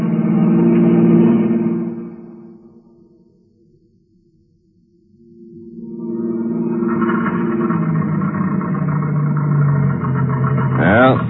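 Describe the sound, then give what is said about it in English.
A car engine hums loudly, then falters as the car runs out of gas and winds down to near silence over a few seconds before dramatic music swells in and ends on a rising sweep. “The end of the gas.”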